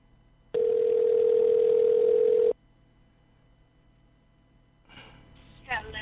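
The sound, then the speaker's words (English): A loud, steady telephone dial tone as a call is placed to someone's phone, holding a single unbroken pitch for about two seconds, then cutting off into near silence before a brief stretch of faint voice at the end. “I'm going to call you on your phone.”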